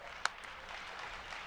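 An audience at Funnel Hacking Live claps steadily in a dense, even patter of many hands, with one sharp, louder clap standing out near the start. No one speaks over it.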